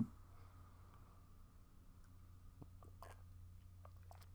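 Quiet sipping of coffee in the morning: a few soft wet slurps and mouth clicks spread over a few seconds, with a low steady hum in the background and no talking.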